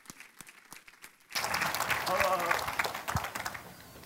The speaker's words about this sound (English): Come on. Give him a hand clap as he comes.